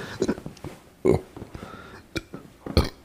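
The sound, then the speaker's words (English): A few short, throaty burps erupt, the loudest about a second in and another near the end, with faint murmuring sounds in between. “This bad thing about sitting in these chairs, whenever you need a burp, it's hard.”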